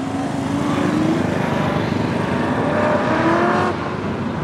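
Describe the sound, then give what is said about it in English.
A loud, steady engine roar with rising and shifting harmonic tones from the fastest race car driving fast around a course, holding constant intensity before dropping off near the end. “That was the fastest car, yeah.”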